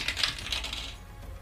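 A quick clatter of small hard objects tumbling across a surface, several bright clicks in the first half-second before the rattling fades out. Close and fairly quiet, with no voices.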